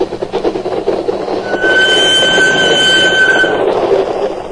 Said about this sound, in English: As my train crossed the border and thundered across the flat Holland marshes toward my refuge in Denmark